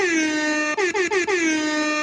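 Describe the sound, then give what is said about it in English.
A loud, brassy air horn blares continuously, stuttering in a rapid burst of four short blasts mid-way before holding again, the classic hip hop air horn effect, alone with no talking. “Boo, Hip Hop Air Horn, where is it?”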